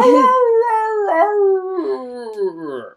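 A wolf lets out one long, loud howl, the tone holding steady, wavering in the middle, then sliding downward and fading at the end. No other sounds accompany it.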